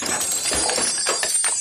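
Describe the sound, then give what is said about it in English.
Loose coins jingle and clink together in a bag, a busy run of bright metallic rattles as the bag is shaken, with no one speaking. “go up there and grab that bag of coins so we can figure this out.”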